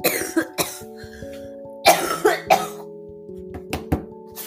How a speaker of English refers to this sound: You know, my coughs have like a different feeling. So like when I cough normally, it just feels like a cough. But like when the dahak wants to get out, I think, yeah, there's like this one part.